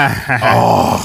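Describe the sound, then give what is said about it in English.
A person vocally imitates heavy, mechanical respirator breathing like Darth Vader: a single drawn-out, raspy, groaning breath, fairly loud, with no other talking. “You should be breathing like Darth Vader by then.”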